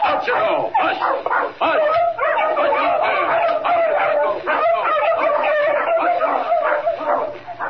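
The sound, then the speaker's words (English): A team of sled dogs, among them Chico and Frisco, barks and yips excitedly in a dense, overlapping chorus, loud, continuing steadily without pause for several seconds. “Gotta take these dogs part of the way, just for the sake of appearances.”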